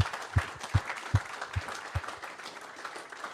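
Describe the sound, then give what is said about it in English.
An audience at Beer Deluxe King Street breaks into a steady round of applause for the venue's team, a dense crackle of many hands clapping, with a few heavier low thuds beating regularly through the first two seconds. “Please, big round of applause.”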